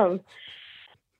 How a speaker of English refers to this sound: Here, I'll do an honorary clear my throat for you.